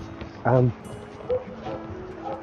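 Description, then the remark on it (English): A big dog barks loudly in the far distance: one deep, full bark, followed by a few softer, fainter yips or sounds against a low background murmur that may include quiet voices. “There's a dog in the far distance barking loud.”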